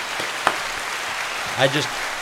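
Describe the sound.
A crowd applauds in a steady, dense wash of clapping with one sharp clap standing out, and a brief voice cries out near the end as the clapping continues.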